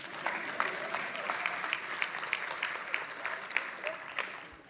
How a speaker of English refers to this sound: I'll take a clap.